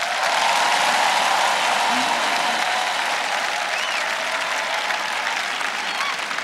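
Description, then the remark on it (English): An audience claps for Jesus steadily and densely for several seconds, a loud, continuous wash of many hands with no voices rising above it. “Who is clapping there?”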